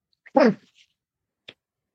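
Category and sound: human body sound, cough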